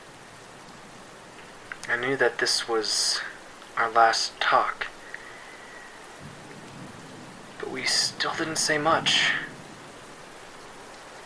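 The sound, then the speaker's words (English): Steady rain hisses softly in the background throughout, a constant wash of noise beneath a person speaking in short, quiet phrases with pauses between them. “Just listened to the rain.”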